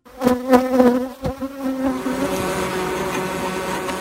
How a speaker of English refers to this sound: Those are the sounds of thousands and thousands of bees right outside my house. I am a beekeeper.